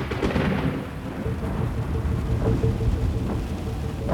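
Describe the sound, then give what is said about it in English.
Steady rain hisses throughout while low thunder rumbles continuously underneath, a dense storm ambience with no voices present. “On the cold, rainy night of March 10th, 1980, Jean Harris sped through New York City”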